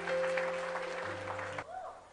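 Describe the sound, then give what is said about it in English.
A crowd claps steadily during a service, dense applause sustained for a couple of seconds over a low steady hum before tapering off. “Yes, you can clap.”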